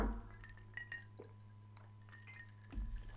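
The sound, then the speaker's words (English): Glasses clink together in a toast, a few bright, ringing taps, with a light knock or two and a low steady hum underneath; no one speaks. “So first, guys, cheers.”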